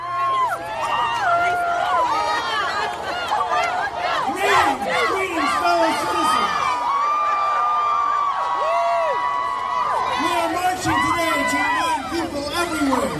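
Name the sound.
rally crowd cheering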